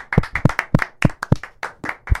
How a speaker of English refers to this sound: Thank you to everybody who bought merch. Yup, let's clap it up for that one. Appreciate it. Thank you.